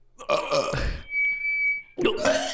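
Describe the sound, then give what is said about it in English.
Two loud burps blast into a microphone on a stage, separated by a brief high, steady whine like feedback, with the second burp cut off at the end. “Burping all over the mic.”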